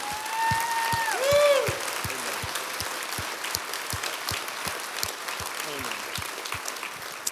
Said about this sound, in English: So would you join me just in a quick round of applause for our pastors and appreciation, and in Bay City as well.